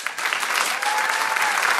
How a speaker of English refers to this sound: Is this a clap if this is your first live You Made It Weird?